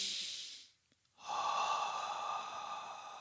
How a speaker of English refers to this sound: Bottom line, breathing in through your nose is good for you. When you're breathing out, make sure that you're breathing out through your mouth.